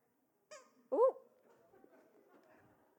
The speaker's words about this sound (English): Can I have the squeaky things back, please? Thank you.